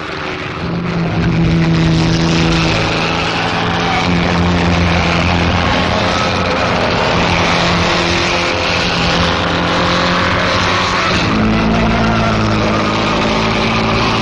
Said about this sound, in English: Grand Prix racing gets new glamour with the inauguration of the Monaco Grand Prix. It is a perfect circuit for Bugattis, and a green one driven by an Englishman, Williams, leads for most of the time.